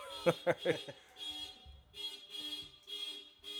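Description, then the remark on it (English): A car horn in the street honks three times in quick, sharp blasts, then sounds again in a string of longer, steady blares with short gaps between, each at the same brassy, mid-high pitch. “Yo, if you going to honk your horn, at least have a cadence.”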